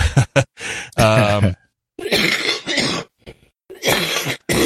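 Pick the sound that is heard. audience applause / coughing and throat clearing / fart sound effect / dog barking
coughing and throat clearing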